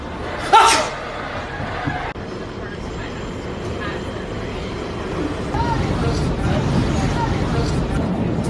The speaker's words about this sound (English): Sneeze again. Sneeze again, I dare you.